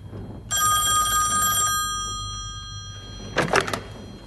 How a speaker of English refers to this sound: It's him. He can make phones ring, he can.